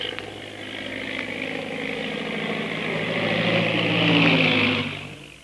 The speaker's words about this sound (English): Meanwhile, back at the plantation, a big black seaplane circles for a landing.